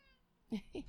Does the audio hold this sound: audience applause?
no